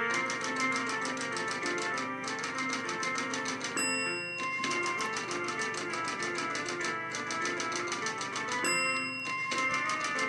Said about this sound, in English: Timing was a little off on that bell. Yeah, a little bit. Well, it's done. This is done with a Mac, so that's why.